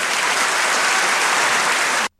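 An audience applauds a song with a dense, steady wash of clapping that holds at full volume for about two seconds before cutting off abruptly into silence.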